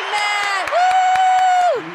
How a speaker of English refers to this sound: Round of applause is so nice. I don't know if I deserve it. So thank you very much for the time. The studio audience loves you. They love you. They just go crazy every time that you come on.